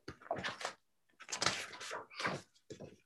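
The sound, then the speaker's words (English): A door opens and closes in a few short clattering bursts separated by brief pauses, with no one talking, as someone marches out the door. “Olive put down her scissors carefully and marched out the door.”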